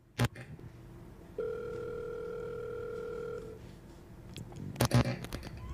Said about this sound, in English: I'm gonna go ahead and try to call him real quick